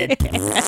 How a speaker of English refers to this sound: It ended with you ripping a big one.